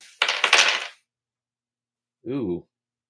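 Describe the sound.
Dice clatter and tumble across a hard tabletop in a quick, rattling burst lasting under a second, rolled for a toughness check in a game, followed by silence and then a brief voiced exclamation.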